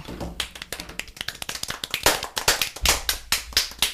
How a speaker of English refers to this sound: Know, the harder you clap, the more love and respect you give a person.